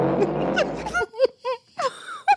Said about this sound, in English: And here is Fart B. So who you got? Do it and play him again. Here's Fart B. And here's Fart A.